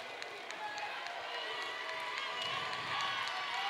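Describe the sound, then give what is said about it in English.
A dense, steady wash of the Parkwood basketball crowd and bench cheering and clapping, a loud roar with scattered sharp claps and shouts running throughout. “Parkwood crowd and bench is getting into it.”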